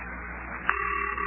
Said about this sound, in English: Listen, Mayor Plumfront's number's ringing. Yeah, I hear it.